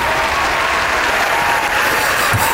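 A prerecorded applause sound effect clip played to introduce comedian Johnny Lynn: a steady burst of crowd applause, dense clapping that stays loud and even throughout with a faint murmur of cheering, no pauses or build-up.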